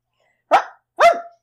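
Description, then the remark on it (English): A person imitates a dog with two loud barks in quick succession, the second longer and rising then falling in pitch, with silence around them. “It sounds very realistic. I'm good at barking.”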